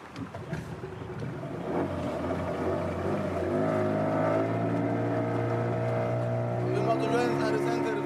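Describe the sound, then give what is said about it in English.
The engine of a small fishing boat, about 18 feet long and used to smuggle migrants from Africa into the EU, drones steadily as it travels along the coast, its pitch rising as it revs up and holding a loud, even hum, with some indistinct voices and commotion underneath at the start. “Getting into a small boat, a small fishing boat, which is probably about 18 feet long.”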